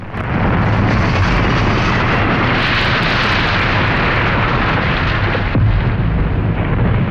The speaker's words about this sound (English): Yeah, we're driving around right now. We're shooting off fireworks. Here we go. You ready for one? Sure, yeah. All right, here we go. 3, 2, 1.